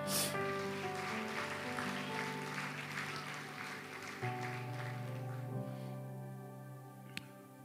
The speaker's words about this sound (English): Somebody give me a hand clap.